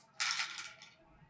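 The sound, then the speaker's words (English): Six dice clatter onto a hard surface in one sharp burst, rattling fairly loud before quickly settling into silence, with no voices. “on the Warhammer side of things, we will be rolling 6 dice”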